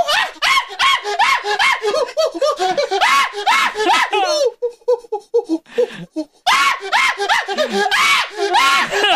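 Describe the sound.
A voice imitates a screeching mountain monkey, letting out rapid, high-pitched shrieks and chattering hoots in frantic bursts, with a brief breathy lull midway before the loud squealing resumes.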